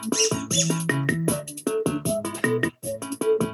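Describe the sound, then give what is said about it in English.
A quirky novelty song about dogs plays at a steady, moderate level, with a man's sung voice carrying a bouncy melody over a rhythmic backing that pulses in short, evenly spaced phrases. “all their songs are some creepy guy singing about dogs, and it's super funny, and I'm going to play a song real quick.”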